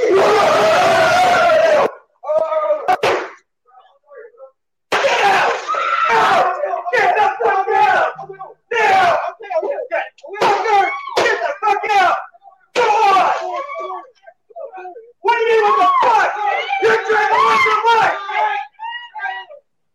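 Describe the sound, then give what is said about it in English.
In a played recording, a man lets out loud, raw, primal screams in several long, strained bursts separated by brief pauses, harsh, with a few shorter shouted cries in between, as he comes out to confront people trying to steal his things. “You can hear his gun cock and this immortal, like primeval scream that to me just, it's like, this gives me hope in people right here.”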